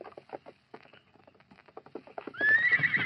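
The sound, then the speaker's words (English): Hooves clop in a steady, uneven rhythm, then Tonto's horse Scout lets out a loud, shrill whinny that rises over the final second, at a shack in the foothills. “I'll tie his horse to that sapling.”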